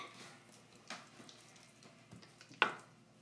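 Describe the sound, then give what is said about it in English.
Water runs steadily from a tap, with irregular splashes and one sharp slap of water near the end, as someone washes their face, scooping and splashing the water with their hands. “I actually already took my shower, but now I'm going to be washing my face because I don't want pimples.”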